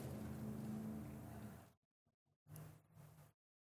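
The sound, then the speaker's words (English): A loud, rumbling roar of sports car engines outside in town runs for about two seconds, cuts out abruptly, then returns briefly as a second, shorter burst of revving. “I hear the roaring of engines out there.”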